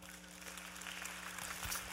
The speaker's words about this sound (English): Isn't that awesome? I love those. We should clap for that.